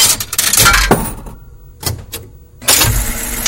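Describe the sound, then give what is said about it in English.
A coin drops into a jukebox, setting off a burst of metallic clatter and sharp mechanical clicks, a short lull, then the machine's loud whirring and rattling as it starts up. “Let's put another coin in the jukebox.”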